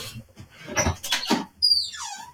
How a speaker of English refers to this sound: In a very old school way, I've just opened the door in the hope that that might make a difference. hopefully that'll strengthen the Wi-Fi signal.